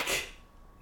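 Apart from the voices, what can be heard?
sneeze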